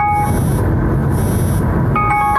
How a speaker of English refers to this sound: Oh, what is that? Hold on. It was just an alarm.